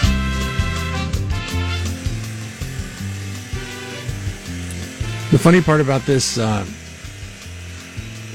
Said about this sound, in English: jackhammer that's running in my garage is I think it bothers you more than it bothers me. It sounds like right next to me. It sounds like you are at a tire shop and they're changing, you know, they do the air ratchet and they change the tires out.